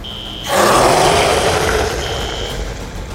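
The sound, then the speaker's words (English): A giant monster lets out a huge, rumbling roar that bursts in after a thin high tone and holds, gritty and sustained, for nearly three seconds. “The monstrosity beamed with a sinister smile, then let loose a hellacious roar.”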